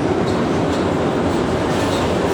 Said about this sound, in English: So just listen to this audio that I recorded outside on the street in Harlem. See, that's the subway going by.